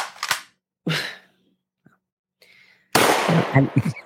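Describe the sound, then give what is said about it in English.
Two sharp gunshot sound-effect bangs ring out a moment apart, followed after a short silence by a louder, sustained burst of noisy crackle with several quick pops. “He pulled the trigger.”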